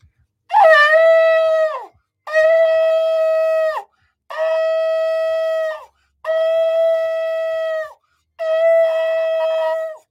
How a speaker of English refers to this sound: We're going to blow the shofar. We're going to sound the alarm.